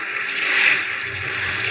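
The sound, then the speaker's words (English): Rough, turbulent water of the North Sea churns and rushes in a steady wash of noise that swells briefly and then holds. No voices can be heard. “And then the incredible relief as it gave and allowed us escape into the black and turbulent haven of the North Sea.”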